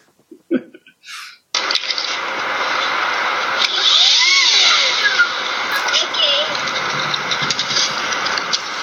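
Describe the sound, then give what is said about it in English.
A leaf blower engine, held between a skater's legs on ice like a jet engine, kicks on abruptly after a couple of brief sounds and roars loudly and steadily, its whine briefly rising and falling in pitch midway through. “But he finds a leaf blower and decides, you know what would be cool? If I put this leaf blower between my legs and I skated with it, and it was like a jet engine.”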